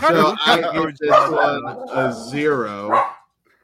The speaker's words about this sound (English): But on that note, your dog's calling bullshit on that. Well, since he's barking during the show, he's got to watch this piece of shit again.